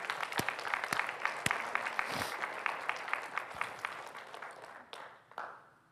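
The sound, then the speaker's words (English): People in a church break into steady applause after a fundraising pledge announcement: dense overlapping claps with a few sharper ones standing out, sustained for several seconds before tapering off at the end. “That's a good time to clap right there.”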